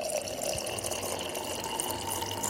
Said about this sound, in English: I'm filling up a glass with water. This is the noise my fridge makes when it fills up a glass with water. Here.